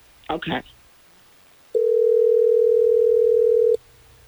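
A brief muffled rustle, then a single steady telephone ringing tone sounds clearly for about two seconds before cutting off, as the Hot 101.5 radio show calls a man on the phone.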